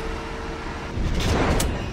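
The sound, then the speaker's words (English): A low, steady hum gives way to a sudden rushing hiss about halfway through as a spaceship pod bay door slides open. The whoosh swells and brightens, then holds. “Open up the pod bay door. Opening pod bay door.”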